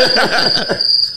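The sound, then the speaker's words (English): A crickets sound effect plays briefly: a steady, shrill high-pitched trill with rapid pulsing chirps that fade after about a second. No one speaks. “Yeah, this crickets because we already have.”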